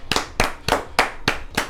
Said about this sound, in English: Yay! Clap it up.